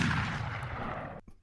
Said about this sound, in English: I'm finishing everything with the explosion or gunshot. I can't help it. It's just like the perfect punctuator.